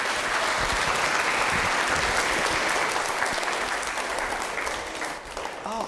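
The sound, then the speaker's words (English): An audience applauds steadily, a dense, even wash of many hands clapping at full loudness for several seconds, easing slightly near the end. “Why don't you clap for her?”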